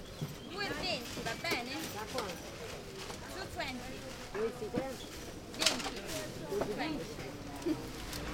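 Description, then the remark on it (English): The outdoor Campo di Fiori market being set up in the morning: scattered knocks and clatter, indistinct voices in the background, and pigeons cooing, all at a steady moderate level. “So we're at Campo di Fiori Market right now.”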